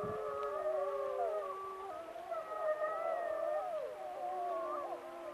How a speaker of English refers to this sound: In the middle of my interview with Carl Swoboda, the Yellowstone wolves began to howl. And the wolves are howling right now. Wolves are howling right now.